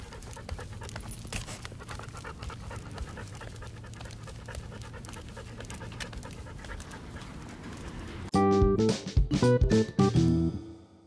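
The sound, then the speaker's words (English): A dog pants rapidly and steadily while being walked around a neighborhood, a continuous rhythmic huffing for several seconds, before a louder, more tonal burst of sound takes over near the end. “But, and then there is the ever-present panting that goes on walking around this neighborhood with him.”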